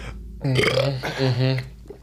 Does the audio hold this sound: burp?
yes